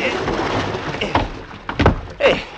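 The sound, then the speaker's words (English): Someone clambering aboard a small fishing boat: a few heavy thumps and knocks against the hull over a steady wash of water, with faint vocal noises mixed in. “Give me a hand up, will you? Pull me in the boat.”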